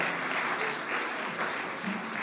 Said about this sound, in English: And for our last announcement, we have a new chapel team that will be with us this morning. Could you give them a round of applause as they're preparing?